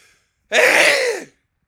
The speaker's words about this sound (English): And also, I'm about to sneeze. So do bear that in mind.